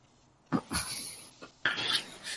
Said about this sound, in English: We were getting a lot of interference and phone noise. Was that you again?